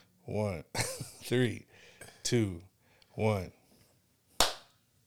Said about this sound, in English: Okay, it's going to be funny because I'm going to clap, so don't trip.